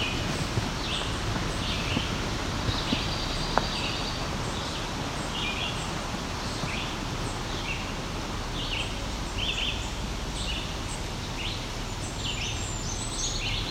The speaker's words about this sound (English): There's a red-eyed vireo singing in the background here.